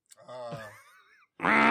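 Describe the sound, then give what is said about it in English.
A person imitates a goose, giving a drawn-out nasal honk that slides downward, then a brief pause and a louder, harsher honk that is cut off at the end. The voice is loud. “can you give us your best goose noise?”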